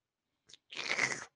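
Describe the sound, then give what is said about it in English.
A brief wet bite, then about half a second of loud, crunchy chewing and slurping of juicy watermelon chunks, with no voices. “And while you're slurping that up over there”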